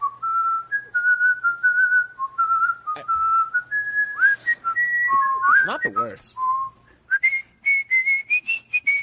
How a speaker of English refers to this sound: Go ahead, whistle. Here's what the people are getting. So fucking rude. It's a long time to whistle.